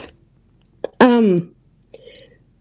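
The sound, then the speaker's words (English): A speaker with a lingering cough gives a short, harsh cough and a rough throat clear during a Bible talk, voiced and fairly loud, with faint breathy sounds before and after and no talking. “I'm still battling this stupid cough.”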